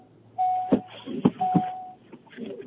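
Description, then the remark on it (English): A car door chime sounds twice, each a steady mid-pitched electronic tone lasting about half a second, with a few sharp clunks in between and no voices. “I heard the ding ding. I didn't know if you were getting out or getting in.”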